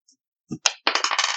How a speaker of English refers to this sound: Roll your damage dice twice.